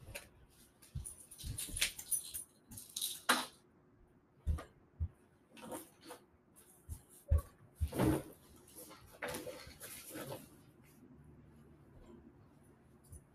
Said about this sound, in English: Had to interrupt this podcast momentarily because my dog grabbed my pills.